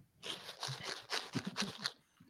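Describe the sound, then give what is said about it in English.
A bag of Cold Blooded Caffeine coffee beans, Snakes and Stogies blend, is jiggled, giving a quick series of dry, crunchy rattling shakes that last about a second and a half before fading out. “Why don't you give that bag a little jiggle? Yeah, hear those beans.”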